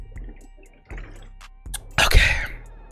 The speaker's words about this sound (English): I need to take a swig of this water. I've been talking on.